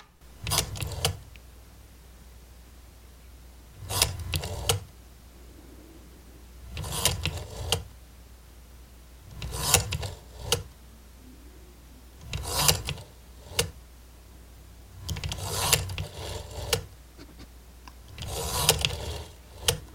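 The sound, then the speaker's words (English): A rotary phone being dialed using pulse dialing: seven short whirring, ratcheting bursts as the dial is wound and spins back, evenly spaced every few seconds, with quiet pauses between and no talking. “So back when we were kids, before touch-tone phones, this is what making a phone call sounded like.”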